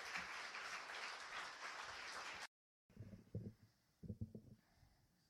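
A crowd applauds steadily, a dense wash of clapping that stops abruptly after a couple of seconds. A short silence follows, then a few scattered low, muffled bursts.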